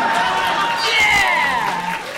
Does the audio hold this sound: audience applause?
yes